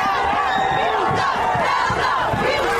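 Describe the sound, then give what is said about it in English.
A dense crowd shouts and screams all at once as a car drives through it and over a woman, a loud, continuous wall of overlapping panicked voices with rising and falling cries and no single voice standing out. “And now watch everybody freak out on the car.”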